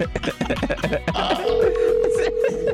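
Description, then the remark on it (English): A voice talks briefly, then a steady electronic ringback tone from an outgoing phone call hums on, clear, with some low background noise underneath. “nothing's worse than being late than not answering your phone when you're in your”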